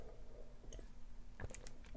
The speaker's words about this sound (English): This is, hold on, sip a tea.